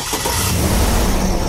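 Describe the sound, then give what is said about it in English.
A 6-liter V8 engine, its battery removed and a NoCo Genius Boost lithium jump starter hooked directly to the battery cables, cranks and roars to life, a loud, steady rumble that fills the short moment with no voices present. “We remove the battery from the 6-liter V8 engine and hooked Boost directly to the battery cables.”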